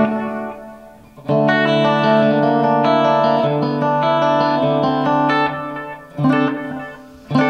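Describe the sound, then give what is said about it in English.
An electric guitar on channel 1 of an amp rings out with sustained, slightly driven chords, compressed by a Keeley limiter pedal and washed in delay controlled by an expression pedal, plus reverb, the echoes trailing off before a couple of fresh strums near the end; no one speaks. “And I can control the delay via this expression pedal.”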